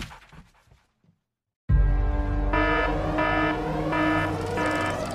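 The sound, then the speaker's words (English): After a brief quiet, a loud industrial rumble bursts in, then alarms at Turning Point Nuclear Power Station start blaring after the main reactor spiked. They sound in steady repeating pulses, roughly four insistent on-off blasts, over the constant low roar. “The main reactor's spiked. The alarms just went off.”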